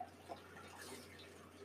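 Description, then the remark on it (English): A 7.2%, 60 IBU beer being poured into a glass, a faint, steady splashing trickle with a few small drips, with no one talking. “While we're pouring this, though, we were, you know, looking at Untappd and trying to look up a couple of these.”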